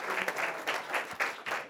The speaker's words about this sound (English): Thank you. Thank you. Round of applause.